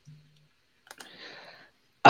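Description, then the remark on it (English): Two quick, crisp computer mouse clicks close together as someone clicks to kick a user from a live stream, followed by a soft rustling hiss, then a sudden loud burst of noise right at the end. “I'm literally clicking kick Shadow Hammer from the stream literally right now”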